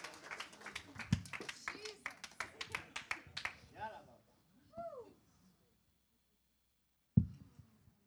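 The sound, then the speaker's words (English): A crowd claps and cheers for about four seconds, a dense rapid patter of hands with raised voices, then it fades to a few scattered calls, a pause, and a single thump. “Yeah, we should cheer about that.”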